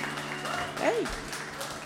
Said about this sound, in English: Hey, everyone. Y'all give another round of applause